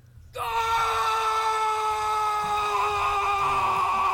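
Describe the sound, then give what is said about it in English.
A man grabs a camera and lets out a loud, sustained scream into it, starting abruptly and holding a strained, harmonic-rich pitch for several seconds with a slight quaver near the end. “This guy like grabs the camera and screams at it.”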